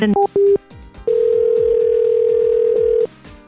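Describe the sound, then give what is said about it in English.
An outgoing phone call to a Denny's restaurant on 87th and Grand: a few short electronic beeps, then a steady, mid-pitched ringback tone that holds for about two seconds before cutting off. “Thank you for calling Denny's on 87th and Grand.”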